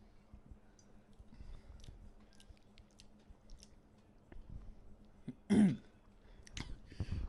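A single loud, brief sip or slurp of a ginger beer with chili in it, preceded by soft mouth clicks and faint rustling.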